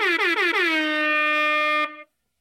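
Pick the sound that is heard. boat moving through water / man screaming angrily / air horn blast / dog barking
air horn blast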